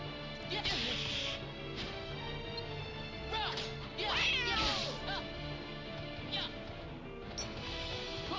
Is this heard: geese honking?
no